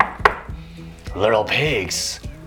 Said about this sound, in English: And of course, who came? The bad wolf. Not just the bad wolf. The big bad wolf. And he knocked on the door.